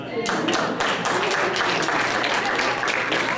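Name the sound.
audience hand claps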